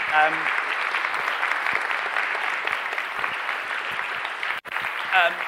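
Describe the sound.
A crowd claps steadily for someone who has just shared their story, in a dense, continuous wash of applause lasting several seconds, with a brief voice heard faintly at the start and again near the end.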